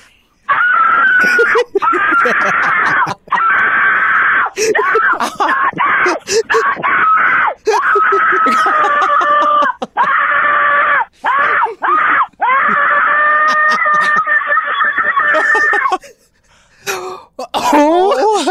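A female caller screams at full volume over the phone for about fifteen seconds: long, strained, sustained shrieks broken by quick gasps, loud, with a thin, phone-like tone before it trails off.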